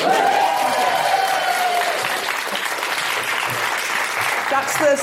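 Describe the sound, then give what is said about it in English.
A sold-out live theatre audience breaks into steady, sustained applause, a dense wash of clapping that holds at an even loudness for about five seconds, with a few cheers and whoops rising over it. “No, when I say sold out in a post-pandemic world, you need to clap.”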